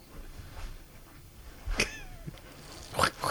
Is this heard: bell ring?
no